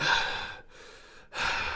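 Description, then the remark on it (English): A voice imitates heavy breathing: a loud, broad rasping inhale, a short quieter pause, then another harsh breath, with no words. “He just left there just breathing like”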